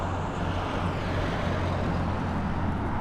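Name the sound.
heavy street traffic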